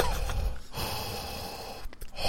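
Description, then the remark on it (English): A voice imitates heavy, mechanical respirator breathing, a long raspy hiss with brief catches and a second strained breath near the end, no speech. “I've done my breathing.”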